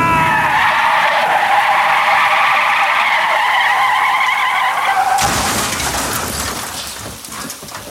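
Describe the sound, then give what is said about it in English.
A car skids in a storm on flooded roads, its brakes failing, with a loud, sustained tire squeal lasting about five seconds, then gives way to a harsh, noisy rush of grinding sound that gradually fades. No one speaks. “Oh my God, the brakes don't work. I can't stop.”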